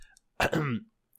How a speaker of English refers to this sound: You clear your throat.